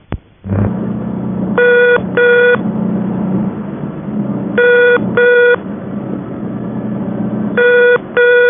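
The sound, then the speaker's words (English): A very high-pitched telephone ringing tone on the fault reporting number at National and Monarch exchanges sounds in paired bursts, repeating three times with pauses between, heard over a steady low background rumble of a noisy place. “Special oddity is the ringing tone on the fault reporting number at National and Monarch exchanges. It is very high pitched.”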